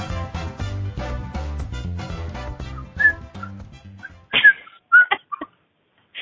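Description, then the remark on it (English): Background music plays, then fades as a handful of short, bright, high-pitched whistles chirp, coming in quick uneven bursts before silence. “You're getting so good with your whistling, darling.”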